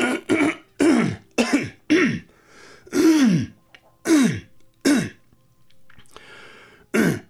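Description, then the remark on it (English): A detective clears his throat repeatedly, about nine short rough bursts in an uneven rhythm, each with a gravelly, pitch-bending grunt, loud against an otherwise quiet background. “Finally, the detective broke the silence and cleared his throat.”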